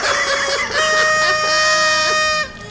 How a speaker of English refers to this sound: The small earthen room exploded with sound and light as sparklers and noisemakers blazed and squawked.